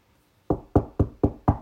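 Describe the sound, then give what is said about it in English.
Five firm knocks in a steady, fairly quick rhythm, solid-sounding, like knuckles rapping on a wooden door, with no voices around them. “Knocks on his heart.”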